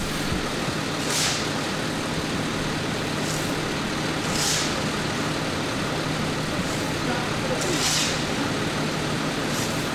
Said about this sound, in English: We got a New York City Department of Transportation crew filling in a pothole. Let's get some audio of that pothole getting filled in.